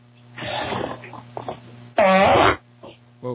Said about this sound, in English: Yeah, I farted on the phone.